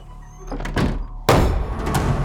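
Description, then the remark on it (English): A few muffled scuffs and shifting sounds, then a door swings shut with a sudden, solid thud that lingers briefly, as a man walks out. No one speaks. “He moved to the door, but hesitated.”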